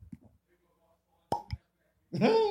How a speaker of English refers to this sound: I feel like that cork pop foreshadows the flavor of this.